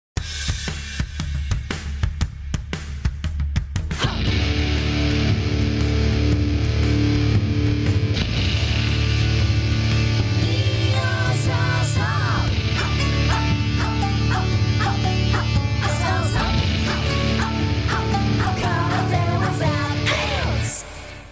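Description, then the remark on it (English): Loud intro music for the show Karate Without Belts, with a heavy, steady low end and rhythmic pulses, kicks in after a few seconds of rougher noise and plays continuously to the end, with no talking. “And on that note, cue the music”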